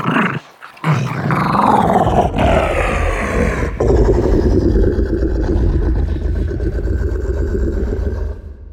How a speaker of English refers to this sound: A good example would be the Rancor from Return of the Jedi. That's the monster that Luke Skywalker has to fight in the pit of Jabba the Hutt's palace. The Rancor's growls came from a feisty wiener dog pitched way down.